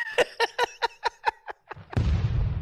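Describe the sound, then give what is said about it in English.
A quick run of about seven tonal beeps gives way to a sudden loud explosion sound effect, a roaring, rumbling blast that holds steady before starting to fade at the end. “No explosion.”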